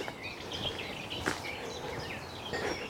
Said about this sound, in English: There might be a blackcap and a garden warbler here. The longer-winded scratch here. It's the garden warbler. Yeah. It really does warble.